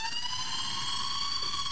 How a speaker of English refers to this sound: I think I like, this is like the alarm that will play